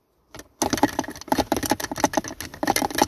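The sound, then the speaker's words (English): Steady scratching and rustling, like small claws, from something living in the back of a damp car that smelled of mice, in dense quick bursts that continue for a few seconds after a brief faint start. No one speaks. “There it is again. Yep, something is definitely living in his car.”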